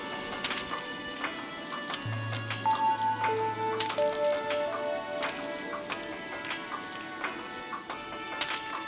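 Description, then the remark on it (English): A mechanical clock, its mechanism altered to make it a random clock, ticks with sharp clicks at uneven, irregular intervals, over a steady low hum and a few faint sustained tones. “It's had its mechanism twiddled with to make it a random clock.”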